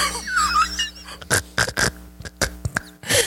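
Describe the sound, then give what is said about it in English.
A voice imitates rude bodily noises, a burp, starting with a squeaky, warbling sound and then breaking into a series of short, raspy, grunting bursts. “Why do you fart like that? Burp.”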